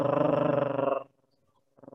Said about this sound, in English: And what you want to do is you want to put your hand flat. I'm not pressing too hard, just a little bit. And you want to feel a vibration. And you'd breathe in your nose and then you'd gargle.